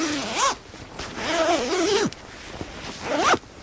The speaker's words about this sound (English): What does your sleeping bag look like? I've got a picture of a dinosaur on mine. Make sure you do your zip up.